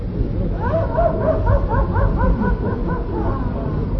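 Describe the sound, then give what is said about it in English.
A run of hyena calls, quick rising-and-falling yelps repeated in a steady, excited rhythm, loud over a rumbling low background. “Oh, calm down, Mr. Hyena.”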